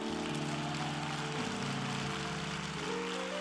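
An audience claps their hands in a dense, steady wash of applause, with sustained low organ chords shifting underneath throughout.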